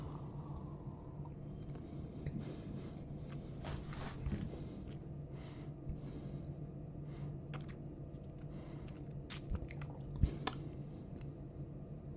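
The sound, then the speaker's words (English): Someone quietly sips whisky, with soft wet mouth sounds and a few small smacks and clicks over a low steady hum. Nobody speaks. “So we'll go for another sip.”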